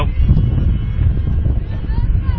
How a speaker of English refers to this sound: Getting windy here, as you can hear it. Yeah, there's not much we can do about that either to protect ourselves from this wind.